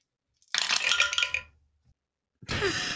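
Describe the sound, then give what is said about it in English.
Dice, including a red die, clatter and rattle across a hard surface for about a second in bright clicking bursts, then silence before a second burst of rattling starts. “You just had to throw a red dice in there, didn't you?”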